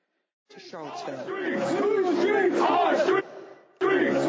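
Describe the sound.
A crowd of counter-protesters at the courthouse in Charlottesville, Virginia, shouts loudly, many raised voices overlapping in a sustained roar for about three seconds, then a brief lull before the shouting surges again.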